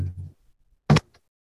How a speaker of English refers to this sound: Cause maybe I shut the door. I think that'll help.